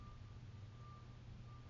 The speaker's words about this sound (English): Alarm is going off. It's a warning.